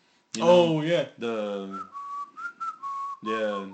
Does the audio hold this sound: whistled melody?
yes